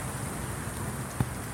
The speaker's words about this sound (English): And this is what we wait for. The storm is this inverse winter's sweet respite. When it happens, you know why it is they call it the monsoon.